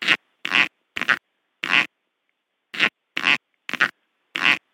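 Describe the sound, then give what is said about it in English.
A snake's cloacal farting: eight short, high-pitched squeaky bursts of air, fairly loud, in two rhythmic runs of four separated by a brief pause, with no talking. “It produces a very high-pitched, kind of squeaky sound.”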